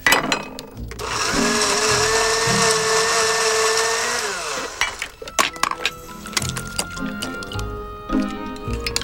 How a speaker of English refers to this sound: Puts her dinner into a blender at the table, blends it up, and then pours it in front of her.